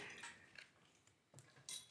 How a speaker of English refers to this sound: We should stop throwing dice into the ceramic bowl. Why? So, it's making a great clinking noise.